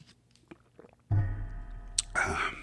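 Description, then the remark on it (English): A sudden thump as a cheap mic stand is hit while someone takes a sip of water sets its spring ringing and wobbling with a metallic twang, followed by a sharp click and a brief rattling clatter near the end. “I hit my cheap mic stand and the spring started bouncing. You heard the spring noise and the bouncing.”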